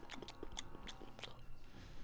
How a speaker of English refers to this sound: Yeah, we didn't know what to say, so now we're just going to munch into the microphones.